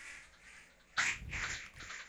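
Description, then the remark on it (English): After a second of quiet hum, a loud, nasal synthesizer tone bursts in like a duck's quack, buzzing and wavering for about a second before fading. “Now it's a cyber duck.”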